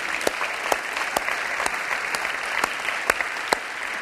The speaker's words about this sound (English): And yeah, you can applaud that.